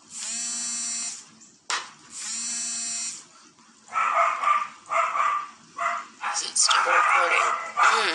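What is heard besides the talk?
dogs barking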